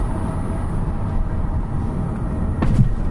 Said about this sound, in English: Not the sound of us going over the speed bumps. Can you hear that slightly science fiction drone, that whistle, that whoa? We are driving around Bletchley Park, which is making us very excited.